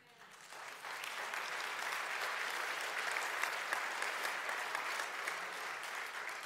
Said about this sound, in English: Honestly, that clap was louder a few weeks ago.